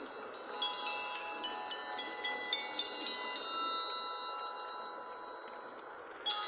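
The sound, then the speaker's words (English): Bright chimes ring continuously, their overlapping metallic tones shimmering and sustaining for several seconds at a moderate, steady level, with no voices present. “Again with the chimes.”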